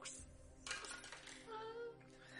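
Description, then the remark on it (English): Dice clatter and tumble across a hard tabletop in a quick burst of small, bright clicks, then rattle briefly before settling, with no talking. “You should use different dice.”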